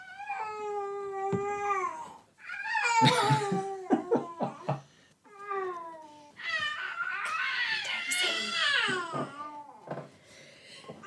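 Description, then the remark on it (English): A five-month-old baby babbles and cries in loud, high-pitched wails with gliding, squealing pitch, coming in several long bursts separated by short breaks, with no adult talking. “Can you add that there's a baby in the background?”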